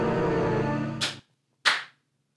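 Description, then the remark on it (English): Two sharp, loud hand claps about half a second apart; the first lands as a steady humming tone cuts off, and the second rings out alone. “What are you clapping for, man?”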